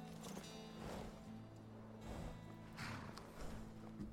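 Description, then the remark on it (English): A few hollow hoof clops at an uneven, slowing pace as a horse is brought to a halt to be parked by a lighthouse, with Driftshade Refuge directly ahead, fairly quiet over a low steady hum with no talking. “So we're going to stop and park the horse here.”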